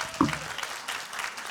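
A round of applause from a group: many hands clapping in a dense, steady patter for about a second and a half, at moderate loudness with a brief louder burst near the start.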